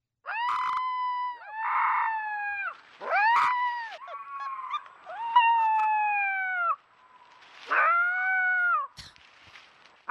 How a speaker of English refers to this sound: I have a special treat for you. This is going to be a quickie. It's a supercut of a 4-week-old wolf pup in the Northlands of Minnesota learning how to howl for the first time.